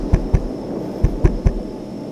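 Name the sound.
knocking on a door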